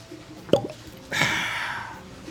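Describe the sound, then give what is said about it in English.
A single hollow pop of a cork pulled from a bottle of Garrison Brothers small batch whiskey, followed a moment later by a steady soft rushing hiss that gradually fades. No one speaks. “Man, that was a wonderful cork pop right there.”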